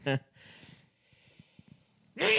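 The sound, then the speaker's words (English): A loud, abrupt sneeze bursts out at the end, sharp and airy, following a brief vocal sound at the start and a stretch of soft breathy noise with faint clicks. “Bless you.”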